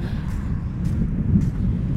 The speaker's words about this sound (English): All right, I gotta wait till I get off this bridge. This is way too much wind. This is silly.